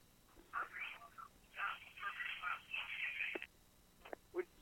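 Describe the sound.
Tinny, narrowband feedback bleeds through a phone line, a muffled, echoing voice in uneven bursts with a thin ringing edge, fairly quiet and cut off by short pauses.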